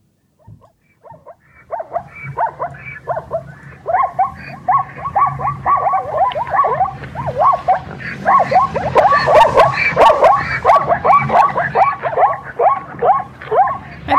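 Zebras give rapid, yelping barks: a few scattered calls at first, then a dense, overlapping chorus of repeated barking brays that stays loud and busy to the end, with no talking.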